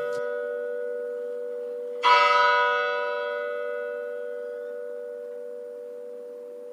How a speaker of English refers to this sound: So it always started with two strikes of the bell, because it's 11:30, and then you hear that sound.